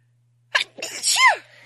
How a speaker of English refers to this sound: I'm going to sneeze.